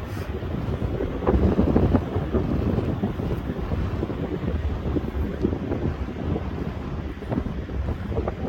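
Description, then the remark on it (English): Strong wind roars and buffets the microphone in a steady, loud rush on the North Spit ocean beach, with the low rumble of surf mixed underneath; no one speaks. “It's funny, it's not that windy inland right now, but on the beaches it is.”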